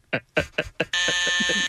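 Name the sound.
quiz game buzzer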